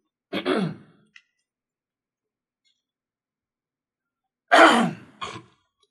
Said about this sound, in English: Okay, I did it. This is live. This is radio. It's Rail Sports. I can do what I want to do. I need to clear my throat.